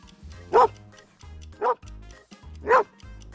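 A border collie barks three times, sharp evenly spaced woofs about a second apart, loud against a low background hum.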